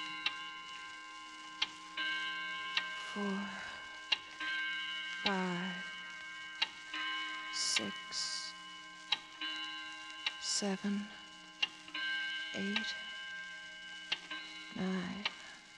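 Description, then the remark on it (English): A clock ticks in sharp, steady, distinct clicks over a sustained droning tone. Brief indistinct vocal sounds surface now and then between the ticks. “I suggest Jean be permitted to forget about big business while we all concentrate on the clock, Mr.”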